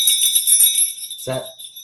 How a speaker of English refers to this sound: It's the bell of playoff spirit. And if you can hear the bell of playoff spirit, then you believe. You believe in the playoffs.